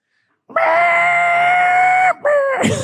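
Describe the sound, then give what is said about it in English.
A voice imitates a race car engine with a loud, sustained, strained vocal drone, cutting out briefly before revving back up and breaking into a rougher, noisier burst at the end. “I can make the sound of a race car.”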